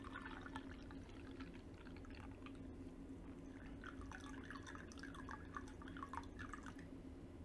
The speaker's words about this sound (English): So you can see how the water is much slower going into the fukamushi because just of the smaller leaves, they hold back the water just a little bit more.